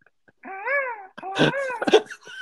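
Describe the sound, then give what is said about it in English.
A cat meows in a few drawn-out, wavering cries, one after another, fairly loud, with brief pauses between them and no talking. “Yeah, it's the bird noises and the cats.”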